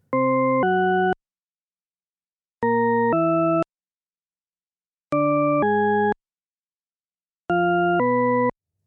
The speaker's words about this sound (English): Okay, let's play the tones.